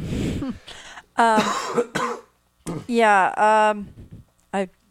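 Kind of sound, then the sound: human body sound, coughing and throat clearing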